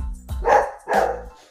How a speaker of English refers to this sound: Excuse me, that is my crazy dog.